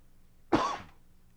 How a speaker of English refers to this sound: I got to cough one more time.